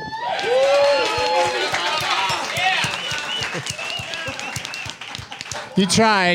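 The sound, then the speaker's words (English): A loud comedy-show crowd at a Doug Loves Movies taping at South by Southwest claps and cheers, with sharp hand claps scattered through a dense wash of overlapping shouting voices that holds steady for several seconds. “You tried to do it, but all that clapping, all that thunderous applause drowned out the callback.”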